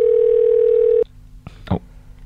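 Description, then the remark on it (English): A loud, steady telephone tone holds for about a second, then cuts off with a click, followed by a couple of faint clicks and a brief rustle on the line, as a phone number is dialed to call a man back. “can you punch his phone in?”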